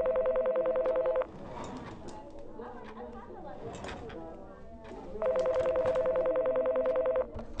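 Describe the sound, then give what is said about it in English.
Loud electronic telephone tones sound in two sustained bursts, one at the start and one near the end, with indistinct voices and murmur filling the gap between them, as a concerned parent phones their child's teacher. “where we got to listen in to a phone call from a concerned parent to the teacher teaching their child.”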